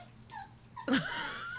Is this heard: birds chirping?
no